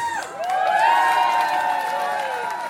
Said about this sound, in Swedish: Kan vi lägga in en applådjingel eller? Har vi det?